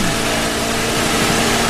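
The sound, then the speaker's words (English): A traffic helicopter's engine is fired up and runs loud, a dense mechanical roar with a steady low hum and a slight rise like revving. No voices are heard. “I got to fire this thing up. Get you going, buddy. You're out of gas or what? There we go.”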